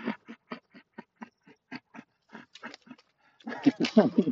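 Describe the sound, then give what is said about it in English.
A female puppy lets out a quick, steady run of short, high yips and whimpers, building into a louder, busier burst of whining barks at the end. “Remember, you see, I'm still a puppy.”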